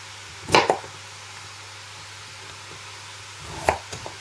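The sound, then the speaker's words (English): A knife chops through a swede on a board: two sharp, crunchy knocks about three seconds apart, the second followed by a couple of lighter taps, over a steady low hum with no talking. “And then when I finish chopping the swede, I'm going to check and see how the meat is doing.”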